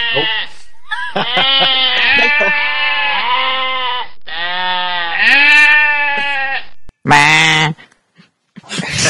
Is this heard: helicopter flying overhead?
no